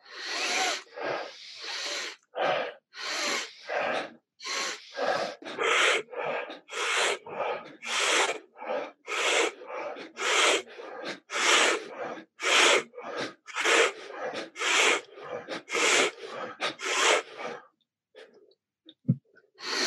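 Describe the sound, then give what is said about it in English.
Deep, forceful breaths drawn in and pushed out in a steady rhythm during a breathing exercise of 30 breaths, about two per second, loud, no talking, until the breathing stops near the end. “And so we'll begin with these 30 breaths.”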